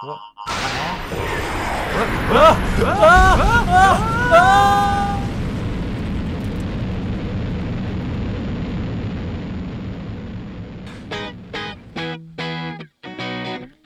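An air conditioner, switched on at its aircon button, starts with a burst of warbling, electronic-sounding chirps, then blows a loud, steady rush of air for several seconds before it cuts into a quick run of stuttering tones.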